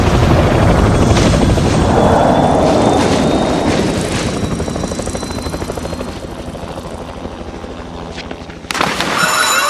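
helicopter flying and landing

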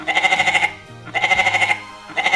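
goat bleating

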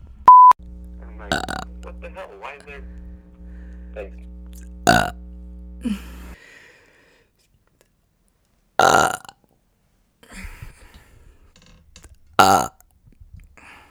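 repeated burping

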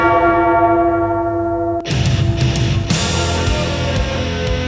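church bell tolling

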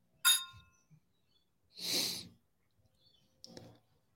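glasses clinking

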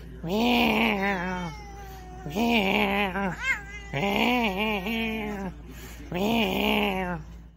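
cat meowing

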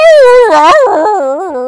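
dogs howling

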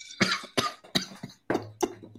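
coughing and throat clearing

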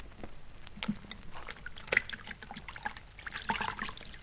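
water splashing

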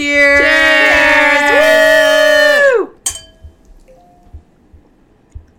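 shot glasses clinking

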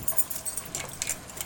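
keys jangling

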